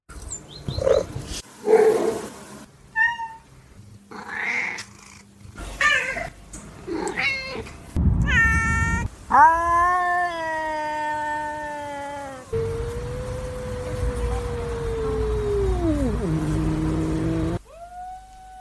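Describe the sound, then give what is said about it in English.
A series of domestic cat vocalizations from a video: short chirps and trills, then several loud, drawn-out meows and a long wavering caterwaul-like call, with no talking. “Did you notice that the cats in the video, apart from meowing, also used other sounds or call types?”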